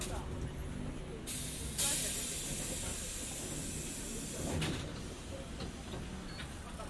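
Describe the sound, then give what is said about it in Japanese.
Pneumatic hiss of tram doors closing in Japan after an announcement that the doors are closing: a sharp burst of air followed by a second, softer hiss a few seconds later, over a steady rumbling background with faint voices. “ドアが閉まります。”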